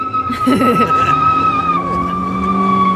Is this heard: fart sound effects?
no